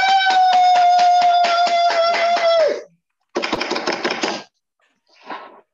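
crowd, applause sound effect

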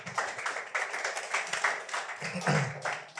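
crowd, audience clapping

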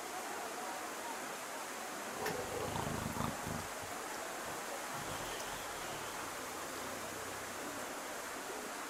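human body sound, someone snoring

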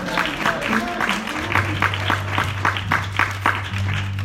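crowd, audience clapping hands

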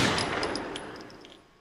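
gunshot

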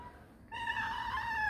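animal, cat meowing

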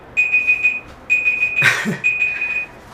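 signal or alarm, phone alarm going off

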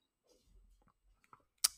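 food or drink, sipping coffee

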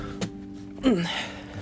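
household object, door being shut

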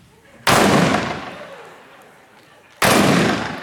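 sound effect, cannon firing sound effect

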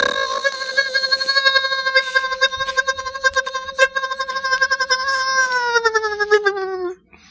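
household object, blender running

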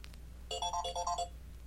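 signal or alarm, telephone ringing

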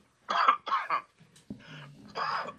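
human body sound, coughing

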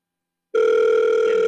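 signal or alarm, telephone ringing

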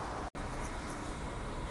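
vehicle, city street traffic

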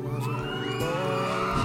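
crowd, concert crowd cheering

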